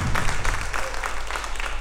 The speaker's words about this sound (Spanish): Un aplauso al Señor porque es bueno.